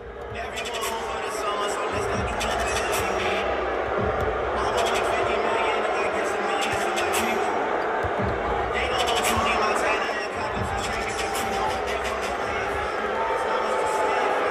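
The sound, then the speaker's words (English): A large arena crowd of Philadelphia Sixers fans roars steadily, a dense wall of voices booing Ben Simmons loudly and continuously as he leaves the court before the game against Brooklyn, with no single speaker standing out from the din. “They were booing him like crazy as he left the court before the game.”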